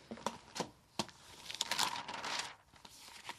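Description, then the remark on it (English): Crisp rustling of local newspaper pages being handled and turned while someone looks through the job listings, with a few sharp crinkles followed by a longer papery swish, no voices. “Just bought the local paper and I'm going to have a look through it and see what jobs are in it this week.”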